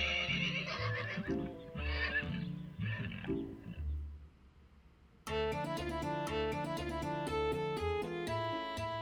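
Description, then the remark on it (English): A horse neighs in a few loud, wavering whinnies for about four seconds, then fades as bright instrumental music starts and carries on to the end. “This particularly kindly Baba Yaga even sends the couple away with a gift, a magic horse.”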